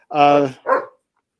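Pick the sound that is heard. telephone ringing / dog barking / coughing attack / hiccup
dog barking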